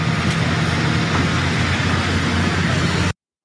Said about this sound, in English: And the hills are like they don't have mountains, but their hills are like rolling. Rolling. The truck is having a hard time there.